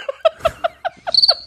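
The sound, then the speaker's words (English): A short burst of crickets chirping, played as a sound effect after a joke, with seven or eight quick, evenly spaced chirps and a thin high trill joining near the end, clear with no talking. “Maybe crickets.”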